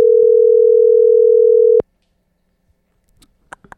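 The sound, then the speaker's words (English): A single steady electronic ringback tone from an outgoing phone call, lasting under two seconds, then cutting off into near silence with a few faint clicks and rustles. “It's ringing.”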